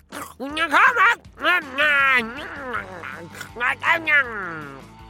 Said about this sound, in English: you really shouldn't podcast with your mouth full. Sorry, it's just that I had a visual aid for today's podcast, but it was so yummy! I had to eat it.